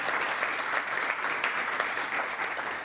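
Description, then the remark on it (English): An audience claps steadily for about three seconds for people who got through a lightning round of questions, a dense, even wash of many hands at fairly loud volume with no voices over it, tapering slightly at the end. “Let's give them a round of applause for getting through that lightning round.”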